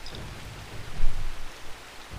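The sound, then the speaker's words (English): Heavy rain pours down steadily in a dense, hissing wash, with a low rumbling undertone that swells briefly midway. No voices are present. “The rain hammers down from you as your feet slip and slide and skid through the soaking wet mud of the road.”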